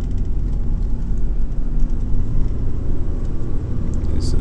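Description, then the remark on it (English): A heavy truck engine drones loudly and steadily, a dense low rumble that labors without much change in pitch as the truck struggles to accelerate. “Why it's doing this, like, why it's, like, acting like it doesn't have any acceleration.”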